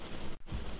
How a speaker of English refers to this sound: Up first, the weather. It's raining. Again.